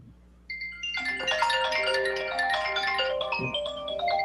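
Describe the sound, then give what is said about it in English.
A phone ringtone plays a bright, layered electronic melody that starts abruptly and continues steadily for several seconds at moderate volume, with no talking. “No, that was an incoming phone call.”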